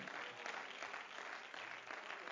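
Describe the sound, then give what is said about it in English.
An audience clapping their hands together in sustained, dense applause to give praise to the Lord, a steady wash of many overlapping claps at moderate loudness with no voices standing out. “Oh, clap your hands and let's give praise unto the Lord.”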